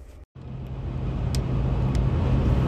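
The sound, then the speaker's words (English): A car that has just pulled up alongside idles, a steady low engine rumble that swells slightly louder over a few seconds, with a couple of brief higher clicks or squeaks above it and no talking. “There's a car that just pulled up to me and I'm afraid.”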